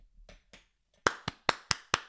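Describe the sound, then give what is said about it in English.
An audience claps in response to a cue: two soft claps, then five loud, sharp claps in a steady, even rhythm, with no voices. “Clap it up for that.”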